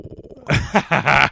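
A low, pulsing rumble builds into several loud, raspy, snarling bursts, like an aggressive growl, over about a second.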